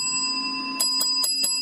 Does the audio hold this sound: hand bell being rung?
yes